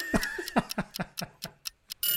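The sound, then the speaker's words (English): An alarm clock rings as a timer ending a quick-fire question round, a quick, steady series of about nine sharp, loud metallic strikes, trailing into a burst of hiss at the end. “Rocky's Clock, Rocky's Clock, you didn't beat Rocky's Clock”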